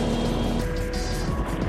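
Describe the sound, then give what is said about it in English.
A motorboat engine runs steadily out on the water, a loud, continuous droning hum with a faint tonal whine on top and no voices. “It's a totally different perspective out on the water.”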